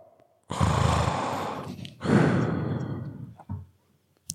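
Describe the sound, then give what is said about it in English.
A voice imitates heavy, raspy mask breathing: two long, loud breaths, one drawn in and one pushed out, followed by a short breathy puff, without other talk. “You need to do like, what are you like snoring?”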